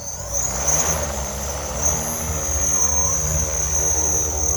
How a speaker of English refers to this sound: Scott Williams and his son, Mac, launch an aerial drone the size of a small table